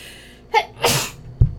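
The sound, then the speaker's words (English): A single sneeze: a short sharp intake of breath, then a loud, breathy burst, followed by a brief low thump. No one speaks. “Bless you. I sneeze, thank you.”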